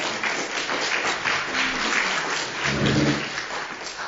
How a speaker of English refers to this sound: I'm an alcoholic. The applause may be a little premature.